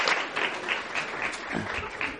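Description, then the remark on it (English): A crowd claps steadily after a reading of Matthew 2, verse 2, a dense patter of many hands at moderate volume, continuing without pause for a couple of seconds. “Let's give Sky a round of applause.”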